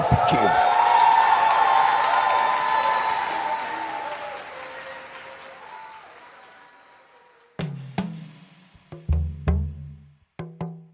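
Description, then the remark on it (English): A large crowd applauds and cheers loudly for Lula after he announces that Brazil is back, a dense roar of clapping with shouts that gradually fades over several seconds before a man begins speaking alone. “Lula vowed to reverse deforestation in the Amazon and recommitted Brazil to tackling climate change, announcing that Brazil is back, and the crowd agreed.”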